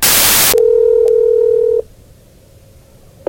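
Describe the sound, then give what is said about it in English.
A short burst of hiss gives way to a steady dial tone on an old landline telephone for over a second, broken by one click, then it cuts to a quiet line with faint clicks at the end, as a crank call is placed in Knoxville, Tennessee, in 1994. “The year is 1994, and there was a major ice storm that hit Knoxville, Tennessee, and we decided to have a little fun, old school way, on the old school landline telephone.”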